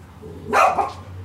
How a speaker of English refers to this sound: Barking isn't going to accomplish anything. Come here. And here they come.